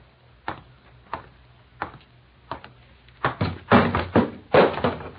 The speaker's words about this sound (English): Oh, she knocks over ashtrays, too, eh?